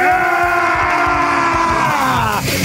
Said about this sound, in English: The count of three, we all yell. One, two, three.